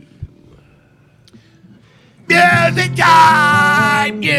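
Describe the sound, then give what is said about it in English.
After about two seconds of near silence, a person lets out a loud, shrill, strained screech, imitating an eagle's cry. It holds for a couple of seconds with a brief break before trailing off. “screeching, like an eagle screech or a banshee or whatever he does.”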